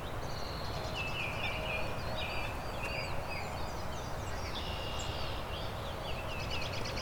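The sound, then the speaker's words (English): A thin, high-pitched songbird song of quick chirps and short trills repeats throughout, fairly faint against a steady hiss of outdoor background noise; the bird is yellow with black streaks, orange on the face and black on the head. “This is a very subtle song, but it's a very colorful bird.”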